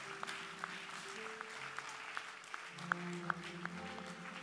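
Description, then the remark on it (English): An audience claps for themselves steadily, a dense wash of applause punctuated by sharper, regularly spaced claps, with a low sustained tone humming underneath and no speech. “I say clap for yourself.”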